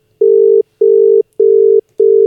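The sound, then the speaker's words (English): A phone ringing tone from a call placed through Siri: four loud, steady mid-pitched beeps, each just under half a second long, separated by short, even gaps, with no voices. “Hey, Siri, call Hector Linton.”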